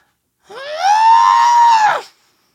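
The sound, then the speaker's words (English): A person lets out one loud, sustained yell imitating a toad, a strained, high-pitched cry that rises quickly, holds steady for over a second, then drops off, with no talking. “Can I hit you with my toad yell?”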